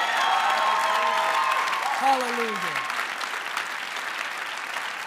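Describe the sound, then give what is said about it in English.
A crowd claps steadily in a dense, sustained wash of applause, while a voice calls out a single word over it around the middle. “Clap your hands if you want to find favor.”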